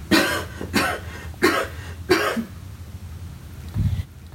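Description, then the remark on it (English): Four dry, hacking coughs in quick succession over the phone from a woman isolating at home after testing positive for coronavirus, each a short harsh burst, fairly loud, followed by a quiet pause with a faint low rumble. “That really is a dry cough.”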